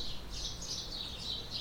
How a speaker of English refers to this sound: Apparently the birds agree. They're singing a song for you.